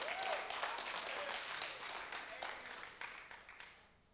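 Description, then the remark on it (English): An audience claps steadily at a speaker's point about forgiveness, a dense wash of many hands that holds loud for a few seconds, then thins out and fades away at the end. “Because here's the thing, I'm glad you clapped at that.”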